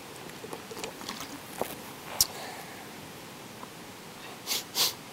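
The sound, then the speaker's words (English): A soft, stifled sneeze comes near the end as two quick breathy bursts, following a few faint clicks in otherwise quiet surroundings. “Bless you.”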